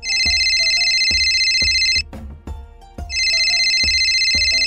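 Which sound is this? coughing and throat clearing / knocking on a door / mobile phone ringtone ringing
mobile phone ringtone ringing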